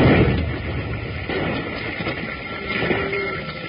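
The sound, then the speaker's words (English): A dynamite explosion from a lit-fuse charge thrown from a train: a loud, broad roaring blast that keeps rumbling for several seconds, with a steady thin tone running underneath and no voices. “All right, the fuse is lit. Look out, Jingles. I'm throwing this out on your side.”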